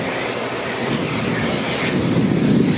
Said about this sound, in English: As the T-50B jet trainers come into view, military enthusiasts squeeze their shutter buttons in hopes of capturing the elegant aircraft on camera.